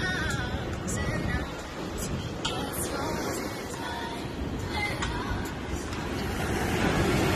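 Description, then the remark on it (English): Steady, rushing roar of surf and wind at a beach, a continuous wash of noise with gentle swells, and faint indistinct voices in the background. “We out there at the beach. We got the chairs. We got the umbrella.”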